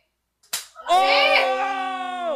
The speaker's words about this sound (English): By the way, none of the slaps were fake. None. None. Oh. Hey, the last slap is hard. Listen to this. Here.